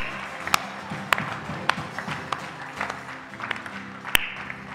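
A worship audience claps hands for the Lord in a steady, scattered patter, with a few sharp, louder claps standing out over a murmuring crowd background.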